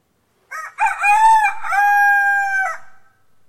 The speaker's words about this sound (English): And a rooster crowed.